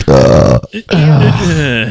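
A person lets out a loud, deep burp, two drawn-out croaking bursts separated by a brief pause.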